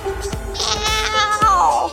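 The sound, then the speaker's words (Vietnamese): A cat gives a drawn-out meow that slides down in pitch toward the end, clear, with a few soft tapping knocks in the background. “Sau khi thứ tự 12 con giáp đã được phân định thì mèo tới và khiếu nại.”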